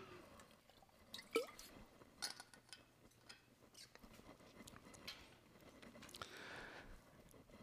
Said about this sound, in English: I need a drink of water before I explain all of this because it's pretty deep.